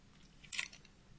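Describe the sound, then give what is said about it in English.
A short crunch of someone chewing and swallowing a hard mint, one crisp burst in the middle of otherwise quiet, low background noise, with no talking. “I'm going to swallow this mint.”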